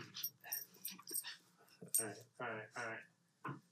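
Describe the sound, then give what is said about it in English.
A dog whimpers and lets out several high, short yips in quick bursts, with faint clattering and brief human vocal sounds mixed in. “Oh, we have guests. Hey, dog. Come here.”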